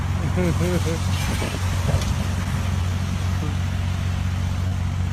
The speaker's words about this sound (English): In this next one, obviously, I think the guy's sleeping in his car, drinking, and the cop's trying to wake him up. The guy wakes up and he's fucking driving away.